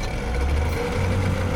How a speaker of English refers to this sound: The tail thrashed, taking out the windows of a few junkers, and then the three turbine engines came to life.